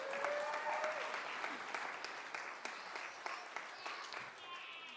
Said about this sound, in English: A round of applause for our volunteer.